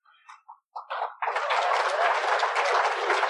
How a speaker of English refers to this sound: Well, I wasn't expecting no clapping for that, but thanks.